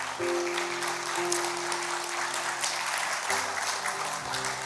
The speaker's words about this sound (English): They don't clap like that when I preach. I mean, I'm just saying.